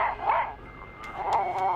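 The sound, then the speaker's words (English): A dog that has a hunting rifle gives two short bursts of barking, the second stretched out and yelping, with a few sharp clicks in between and no one talking. “Get the gun away from the dog.”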